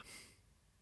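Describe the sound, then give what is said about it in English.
A woman lets out one short, sharp gasp, a quick breathy intake of air performed as a suspense Foley effect, followed by near silence. “She gasped. Perfect she gasped representation. I was trying to add some Foley.”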